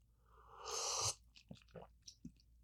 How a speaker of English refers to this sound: Let me take a sip of this bland tea. Literally, it feels like a water-flavored tea.